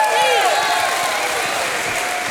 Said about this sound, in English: Somebody, if you're going to heaven, if you got your reservation, stand up and give God a hand clap and a shout of praise.